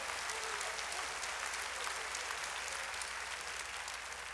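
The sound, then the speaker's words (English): An audience claps their hands to praise God in steady, dense applause for several seconds, a continuous crackling wash of many hands with no voices standing out. “And if you know I'm right, clap your hands and praise God.”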